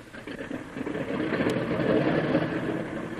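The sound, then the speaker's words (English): Engines of a Stratoliner airliner at an airport hold a steady, low droning roar that swells slightly and stays even throughout, with a brief faint high tick partway through and no voices. “That's your plane over there, Lil. Quite a ship, huh?”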